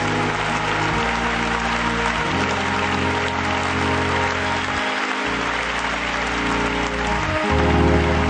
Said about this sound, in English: Give the Lord one more hand clap of praise.